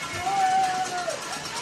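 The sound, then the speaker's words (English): A Mount Pleasant football crowd roars in a steady, dense wash of cheering and shouting as Riverside faces fourth and 2 from the 10-yard line, with a thin sustained whistle-like tone riding over the noise for about half a second before fading back into the din. “Mount Pleasant crowd makes some noise.”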